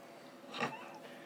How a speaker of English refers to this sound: And Boots is like, meow. I'm like, shut up, Boots.